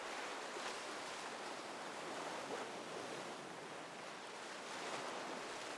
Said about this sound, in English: I waded into the ocean, just far enough to keep my balance. I felt the power of the waves, one after the other, pushing past my legs to meet the shore, and then pulling back into the ocean.